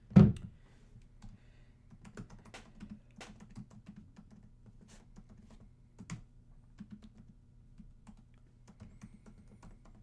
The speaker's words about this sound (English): Hear all that clicking.